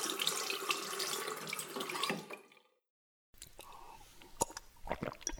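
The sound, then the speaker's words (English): A faucet runs steadily into a sink with a broad hissing gush for about two seconds as someone washes their hands and scrubs their face, then shuts off, followed by quiet splashes and hand-rubbing sounds after a brief silence. “Setting the glass of water on the sink, I used the toilet and washed my hands and scrubbed my face.”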